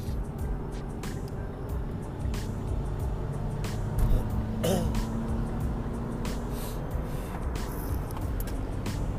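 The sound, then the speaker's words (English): A steady, loud low rumble of engine and road noise from inside a moving car accelerating onto a highway to merge with traffic, continuous throughout, with a few brief faint clicks and a short rise in noise midway. “It's so annoying when you're trying to merge onto the traffic and the guy in front of you is going 60 or 70 when you're supposed to be going 100.”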